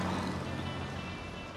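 An MGA 1500 sports car's engine rumbles past, a steady, throaty drone that eases off slightly as it moves away, with no voices over it.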